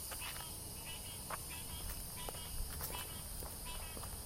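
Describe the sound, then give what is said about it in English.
A steady, high-pitched chorus of bugs chirps continuously and softly in the evening, with a kind of honking sound, a few faint clicks and soft footstep-like thuds scattered underneath and no one speaking. “So there's lots of bugs. And there's this kind of honking sound.”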